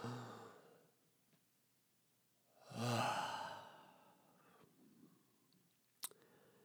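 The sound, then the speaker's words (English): A deep breath rushes out in a loud sighing exhale, followed by a softer, quieter breath and a brief click near the end, with no talking. “Even if when you find yourself getting a little stressed out or a little bent out of shape, more so than you feel like you should be, just take a moment and just take three deep breaths and just tell you, just breathe.”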